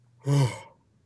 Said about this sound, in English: Yawn 10 times. Do one yawn right now. I'll yawn with you.